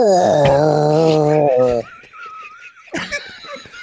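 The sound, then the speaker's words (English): A person vocally imitates an elk mating call: a loud, strained, wavering bellow with rising harmonic squeals lasting under two seconds, then quieter high whistly squeaks and breathy noises. “can you tell me what you think an elk sounds like having sex?”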